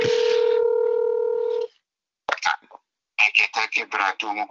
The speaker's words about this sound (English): Okay, it's ringing. It's better than it was before. It wasn't even ringing.